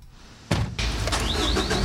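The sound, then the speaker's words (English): After a brief quiet moment, a water truck engine in Taiwan abruptly cranks and catches as the ignition is turned, then settles into a loud, steady rumble with a thin high whine rising over it. “With a turn on the ignition, this truck is ready for action.”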